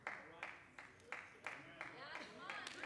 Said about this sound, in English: Thank you. I appreciate all two of you clapping.